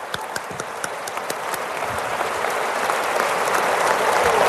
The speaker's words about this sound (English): And now a round of applause.